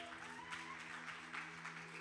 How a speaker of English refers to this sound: Everybody give me a hand clap.